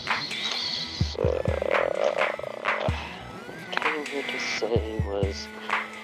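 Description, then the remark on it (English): A toad croaks repeatedly in low, pulsing bursts, fairly loud, against a busy outdoor chorus with other calls and faint voices in the background. “There's another toad.”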